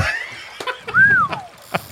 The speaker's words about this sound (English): All right, let's cut that water. I got it.